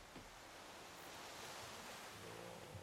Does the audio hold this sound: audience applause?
no